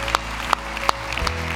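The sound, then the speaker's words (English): A few scattered, hesitant claps from an audience ring out at an uneven pace, four distinct hand claps over a steady low background hum, with no one speaking. “A lot of you are nervously clapping right now, and that's okay.”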